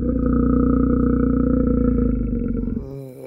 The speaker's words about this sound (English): It's a growling bear.